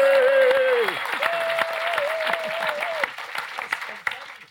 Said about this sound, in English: Round of applause.